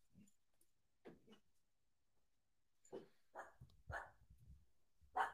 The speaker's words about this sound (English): Shh. Puppies in the studio.